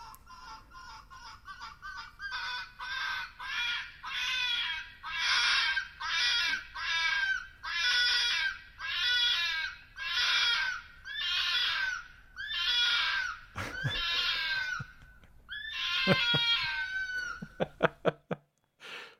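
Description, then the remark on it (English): A vixen fox in heat in spring screams over and over, a rapid series of shrill, raspy yelps that grow louder and more drawn out, ending with a few sharp knocking sounds. No one speaks. “This is the sound of a vixen.”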